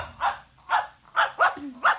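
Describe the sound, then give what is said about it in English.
A puppy dog named Mr. Blister barks five times in a steady, evenly spaced rhythm, each bark short and sharp. It sounds moderately loud, with no one talking over it. “I'm going to introduce you to my puppy dog, Mr.”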